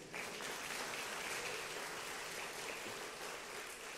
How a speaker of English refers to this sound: Y'all clap for him.